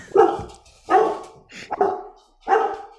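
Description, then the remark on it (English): A dog named Pixie barks four times in a steady, evenly spaced rhythm, each bark sharp with brief quiet gaps between, and no one talking. “For the record, I didn't want a dog.”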